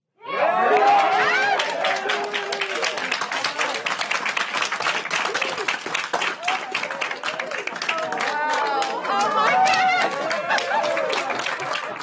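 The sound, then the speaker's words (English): NASA mission control staff cheer and whoop early Monday as the Ingenuity helicopter achieves the first flight on Mars, with steady, dense applause throughout, a loud, sustained burst of excited voices and rapid clapping that swells again toward the end. “The sound from a very happy mission control at NASA early Monday as the Ingenuity helicopter made history on Mars, achieving flight for the first time on another planet.”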